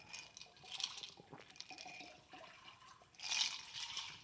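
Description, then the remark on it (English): Tequila poured into a glass in short, splashy bursts, with soft liquid trickles and a quiet sip between the pours. Fairly faint overall, with no talking. “Let's go ahead, and we can do a preemptive try here”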